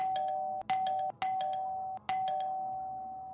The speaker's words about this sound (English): Then the buzzer rings.